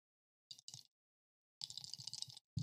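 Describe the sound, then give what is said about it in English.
Astrology dice, marked with numbers and letters, clatter together in a hand: two quick bursts of clicking, a pause, then a longer rattling shake, with a final click at the end. Fairly crisp. “Just fucking clicking them.”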